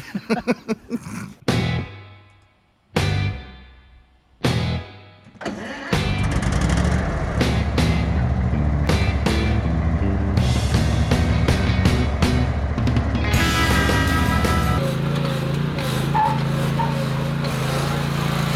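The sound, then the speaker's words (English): A brand-new zero-turn lawn mower's small engine cranks in several short bursts with pauses, then catches and settles into a steady, loud idle with a low rumble, shifting its tone slightly as it keeps running. “Yeah, just gonna have a really nice zero turn.”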